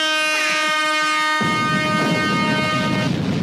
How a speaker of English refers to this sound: Those are celebration horns and explosions.